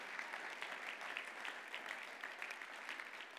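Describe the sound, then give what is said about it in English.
An audience gives God a round of applause for what he will do in Bankstown, a dense patter of many hands clapping at an even, sustained level with no voices rising above it. “But let's give God a round of applause for what he's going to do in that place.”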